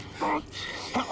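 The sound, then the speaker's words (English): Two short, high puppy whimpers from puppies roaming around in a video game, one after another with a brief gap, over a steady low background hum. “There's a lot of puppies roaming around.”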